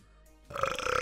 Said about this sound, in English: There's the burp that we needed. There we go. That was good.